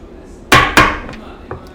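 Two loud, sharp thuds of whiskey shot glasses slammed on a table after a toast land in quick succession, each with a brief ringing decay, followed by a couple of fainter knocks.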